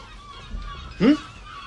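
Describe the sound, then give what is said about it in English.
A single short, harsh bird squawk like a goose's honk cuts in briefly, rising in pitch, over a low, steady background rumble, as birds attack a station. “Given that these birds have already been attacking the station for about 2 hours, what's the longest we'll have to sit this out?”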